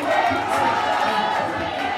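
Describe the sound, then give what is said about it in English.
A dense stadium crowd roars and cheers at a women's soccer semi-final between England's Lionesses and the Matildas, a steady loud wash of many voices with no breaks across the two seconds. “Regardless, many were just pleased so many came to cheer on women playing soccer”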